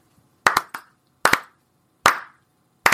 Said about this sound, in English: Here, I'm going to even put this down so you can't see me clapping. Yeah, there we go. There. All right, ready for five claps.